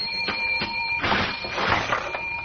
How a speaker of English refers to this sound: My goodness, I heard that cash register ringing all the way downstairs in the stockroom, McGee.